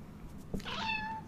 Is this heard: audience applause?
no